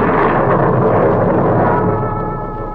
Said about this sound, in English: Suddenly there was an ear-shattering thunderclap.